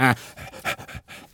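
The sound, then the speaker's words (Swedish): A person imitates an angry dog's growl to show how to work the throat muscles for speaking Arabic: a brief voiced snarl, then a quick run of harsh, breathy rasps in an uneven rhythm, with no other talking. “Och så ska du låta som en arg hund, ursäkta mig.”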